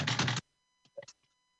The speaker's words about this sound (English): I've got my typewriter now.